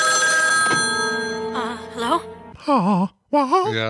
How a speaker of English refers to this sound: The 80s had a lot of, hey, we got old phones that ring real loud and they'll jump scare you. So here's one.